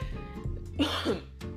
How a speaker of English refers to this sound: Okay, I'm gonna be coughing a lot trying to clear my throat, or probably like dying, I don't know.